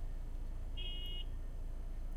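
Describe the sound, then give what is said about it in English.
A single short car horn honk from someone honking to say hi, a thin high-pitched tone lasting about half a second, rising out of a steady low rumble of background noise with no one speaking. “Somebody honking at me?”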